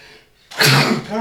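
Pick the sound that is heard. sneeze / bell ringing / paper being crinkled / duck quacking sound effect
sneeze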